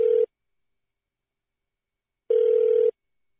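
A telephone ringing tone, heard as a steady electronic buzz over a phone line: a brief tail of one ring, a two-second silence, then one fuller ring. No one speaks.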